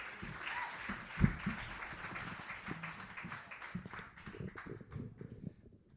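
A crowd applauds to welcome the next performer, with dense, steady clapping, a few sharp louder claps near the start, then the applause thins and fades out over about six seconds.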